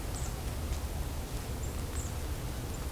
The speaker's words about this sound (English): High-pitched ringing is brown creeper.